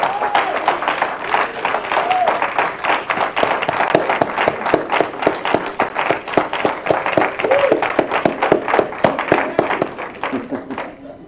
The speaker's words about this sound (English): So I'm asking the congregation to stand, and the folks online to stand as well, and let's give them a hand clap of appreciation.